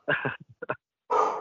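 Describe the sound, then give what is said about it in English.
A dog barks several times in quick bursts, a pair of sharp barks, a few short yips, then one longer, louder bark, with no talking, as it tries to attack the blowing wind. “I don't know if you guys can hear, but my dog's being an asshole right now.”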